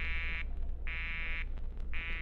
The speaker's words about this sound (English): I went downstairs to the hall phone, dialed it, and got a busy signal.